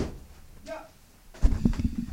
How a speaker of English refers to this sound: Shut that door on him.